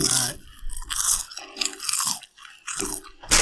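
crunchy snack being chewed

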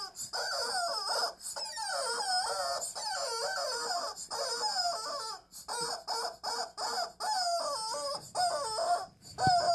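chicken clucking and crowing

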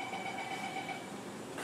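train

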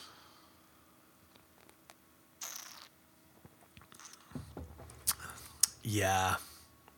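sipping beer

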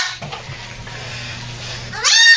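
baby goat bleating

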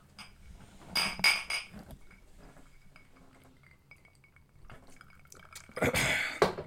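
glasses clinking

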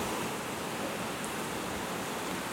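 rain falling

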